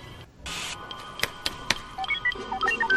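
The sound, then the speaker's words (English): Hayden Christensen, as Anakin in a deleted scene, imitates droid beeps with his mouth to the side: a rapid string of short, high chirping tones jumping between pitches, following a brief hiss and a few sharp clicks. “So, in this deleted scene, Anakin literally beeps out of his mouth.”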